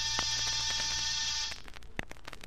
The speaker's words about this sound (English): After disturbing 7 occupants of 7 different apartments and getting 7 nasty comments, I rang one buzzer.